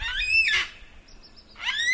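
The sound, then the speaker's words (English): A black cockatoo gives two loud, harsh, wailing screeches, one at the start and one at the end, separated by a brief quieter pause, with no talking. “Next one that's on the list is the black cockatoo.”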